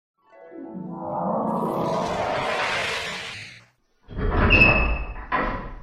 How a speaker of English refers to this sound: So as the doors swing open, these unnecessarily large doors